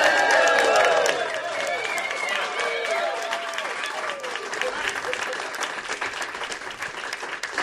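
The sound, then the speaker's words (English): A near-record live studio audience at the WFHB Saturday Show, broadcast from the corner of 6th and Washington Streets, applauds and cheers loudly, dense clapping with whoops and shouts rising over it, sustained throughout and easing slightly after the first second. “I'm just going to let the audience tell us how special they feel the show is going to be this morning.”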